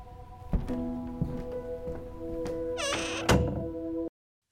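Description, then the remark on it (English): A door is pulled shut: a few soft knocks and a brief creaking squeal, then a solid thud as it closes, over a steady low hum, with no one talking. “Close the door on your way out.”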